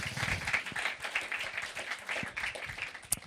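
An audience applauds with dense, steady clapping from many hands, a continuous crackling wash of claps lasting a few seconds without any voices over it.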